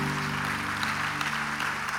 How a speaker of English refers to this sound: Come on, I think we should all clap right there.